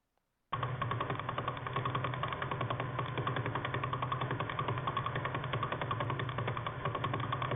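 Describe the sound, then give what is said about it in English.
A radio telescope recording of a pulsar about 1,000 light years from Earth and about 12 miles across. A steady, rapid train of pulses blurs into a droning, engine-like buzz that starts abruptly and holds at an even loudness for about seven seconds. “And with a radio telescope, they were able to hear it. And so this is what it sounds like.”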